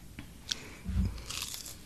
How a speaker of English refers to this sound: Sorry, chewing.